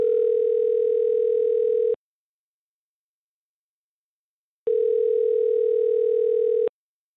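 A phone line rings back twice as a call is placed live on the Mix 94.7 radio morning show's Waiting by the Phone segment, each steady electronic ring tone lasting about two seconds with a long silent gap between, clear and fairly loud with no one talking.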